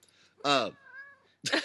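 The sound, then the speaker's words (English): A female cat, just in from another room to an empty food bowl, lets out a loud, strained meow, trailing into a thin whining tone, then a harsh, noisy yowl at the end, sounding agitated and complaining. “There's no food in the cat's bowl. And she is just walked in looking so angry from the other room.”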